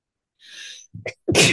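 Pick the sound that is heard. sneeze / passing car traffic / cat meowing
sneeze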